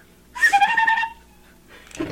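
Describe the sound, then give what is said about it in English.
A bright chime rings out once as a cue to turn the page of a read-along book, its clear ringing tones holding for under a second before fading, followed by a short stretch of quiet and the start of another sound. “You will know it is time to turn the page when you hear the chime ring like this.”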